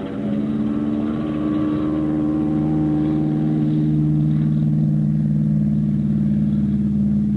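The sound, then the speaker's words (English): A loud, steady engine drone with strong low harmonic bands holds for several seconds, swelling slightly in intensity as a plane's engine is given full power for takeoff, leaving the ground after about 200 yards. “I gave her all she could take and got off the spot after I'd gone about 200 yards.”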